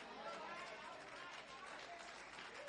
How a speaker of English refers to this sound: I got 18 claps. I'm watching y'all. Thank y'all. I'll count them.